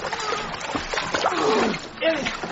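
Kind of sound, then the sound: sound effect, splashing water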